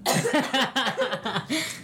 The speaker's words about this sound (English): I still have to cough.